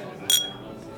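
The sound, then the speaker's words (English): A single bright clink of glasses touching in a toast, short and ringing, rising briefly above a low murmur of background voices. “I can't believe Amanda Merriweather bought me a drink. Yep. Cheers. Cheers.”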